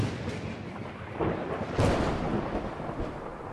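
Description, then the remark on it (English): A loud, rumbling thunder sound effect rolls continuously for a few seconds, with a sharper crack around the midpoint and a dense low-frequency roar throughout, no voices present; it introduces the Thunder Round segment of 60-second comic book reviews. “It's time for Thunder Round. Thunder Round.”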